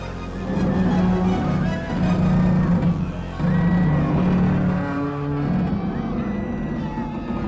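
A ship's loud, strained groan as it shakes loose from the earth it is lodged in and falls: a deep, sustained creaking rumble that swells in two heavy surges, then eases into a lower, rougher drone.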